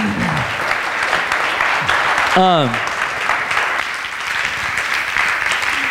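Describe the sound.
An audience applauds steadily for the whole stretch, a dense, loud wash of clapping, with a short rising whistle or cheer cutting through partway in and scattered voices underneath.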